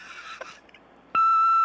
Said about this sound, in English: Hey, we can't make it to the phone right now. Please leave a telephone number and a message after the tone, and we'll return a call to you as soon as possible.